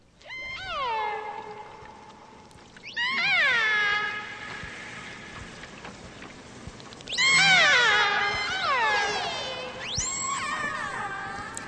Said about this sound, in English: The second sound is the sound of another orca pod, but this will be from a transient population of killer whales, not a resident population.